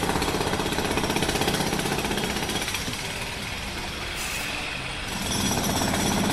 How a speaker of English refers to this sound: Luke, can you tell the jackhammer outside to, like, stop?